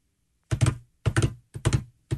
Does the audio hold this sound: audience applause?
no